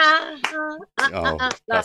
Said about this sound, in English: and everyone's clapping really badly on the one. Like, you know, not on the two.